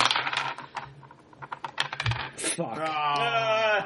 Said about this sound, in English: Well, the one that was taking the longest to land? Yeah, my stress die rolled a one.